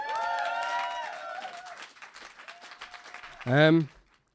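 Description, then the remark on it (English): An audience claps in a dense, steady burst of applause, with cheers rising over it, then the clapping thins out before a single loud voice cuts in near the end. “A round of applause, please”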